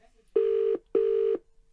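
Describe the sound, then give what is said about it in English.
Two long, steady ringback tones pulse from a telephone line on an outgoing call, each lasting about half a second with a short gap between, clear and fairly loud with no talking over them. “I tried to call.”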